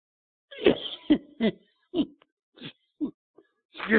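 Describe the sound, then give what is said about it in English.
A harsh coughing fit: a rapid series of seven or eight sharp coughs in a broken rhythm, loud and raspy, with no talking. “I'm making myself cough.”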